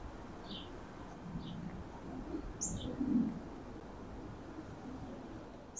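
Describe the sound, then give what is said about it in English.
Two cardinals chirping outdoors: a handful of short, bright chirps spaced a second or so apart, over a steady hiss of background noise with a soft low rumble. “Two cardinals, I think.”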